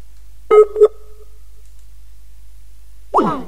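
Two short electronic tones beep in quick succession, with a lingering ring trailing off, followed after a pause by a brief burst of a voice. Sounds like phone keypad tones as someone dials a cell phone.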